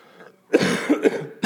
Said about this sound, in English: I'm going to try not to cough a lot, but if I do, excuse me.